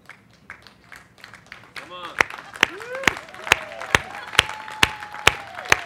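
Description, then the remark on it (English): Sparse, scattered applause from a small audience: a handful of isolated claps, faint at first, then sharper and steadier, while someone keeps speaking over them. “It was a cricket clap, but it was good.”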